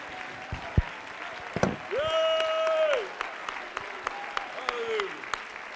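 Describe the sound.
An audience bursts into steady, dense hand clapping and shouting unto God, loud shouts and cries including a sustained high voiced shout rising above the applause, with sharper claps punctuating throughout.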